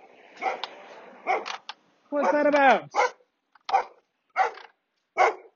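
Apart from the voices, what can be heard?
dog barking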